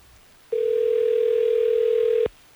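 A telephone dial tone hums steadily for nearly two seconds, loud, starting and cutting off abruptly with no voices over it, as the Hot 101.5 radio station places a call.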